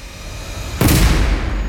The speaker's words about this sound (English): Instead, there's another sound outside, all too familiar, the sudden, unmistakable crack of a gunshot, deafening the suburban street.